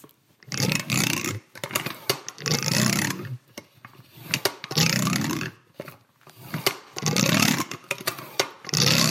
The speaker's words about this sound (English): And there are items used by some of the women on the house staff, like a hand-cranked vacuum cleaner. It sounds a lot like indigestion.